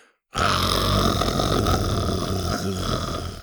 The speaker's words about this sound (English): The little dinosaur instinctively lowered its head and growled at the girl.